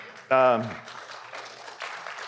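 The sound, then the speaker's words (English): An audience claps in a steady, moderate patter of overlapping hand claps, with a brief loud voice rising over it at the start. “Some of that's a clap of faith, I understand.”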